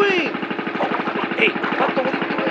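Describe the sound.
A Mercury outboard boat motor runs at a steady idle while pike fishing in Nebraska, putting out a fast, even chugging pulse at a loud level. Faint voices and whistly tones drift over the engine throughout.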